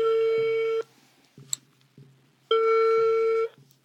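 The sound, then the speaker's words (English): A telephone call placed from a hotel in Mexico City rings out twice on the caller's end, two steady buzzing tones about a second long separated by a pause, with faint background hum and soft clicks between them. “one night at a hotel in Mexico City, she decides, I'm just going to try to call him.”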